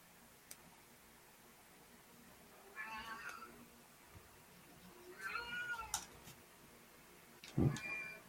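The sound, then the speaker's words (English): A pet cat meows two drawn-out times a couple of seconds apart, then gives a shorter, sharper cry near the end, against a quiet hiss of background noise. “Contrary to popular opinion, my cats are not starving.”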